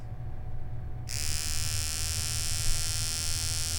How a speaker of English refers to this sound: And I have my clippers.